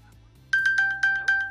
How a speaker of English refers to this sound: And your watch will ding, or like you'll like, get a notification. My watch is on me.